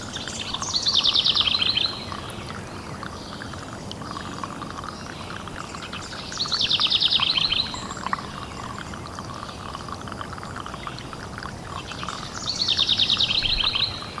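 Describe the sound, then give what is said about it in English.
Birds chirp outdoors in three short bright bursts spaced evenly apart, each a quick trill, over a steady hiss of background noise like rushing water or insects. No one speaks. “The birds and the insects and all the creatures we can and cannot see breathing the way they breathe.”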